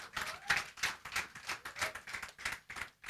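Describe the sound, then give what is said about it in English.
A group of fathers and men claps for the mothers on a Mother's Day Sunday morning, in a steady, even rhythm, about three claps per second, with bright, sharp hand strikes at a moderate level and no voices. “I think all the fathers and the guys should clap for our mothers here this morning.”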